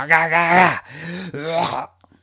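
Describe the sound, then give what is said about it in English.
Someone clears their throat with a voiced, groaning rasp in about three pulses over nearly two seconds. It is fairly loud, then falls quiet. “I mean, I pierced everyone's ears when I sang earlier, so I'm sure they could take you clearing your throat once or twice.”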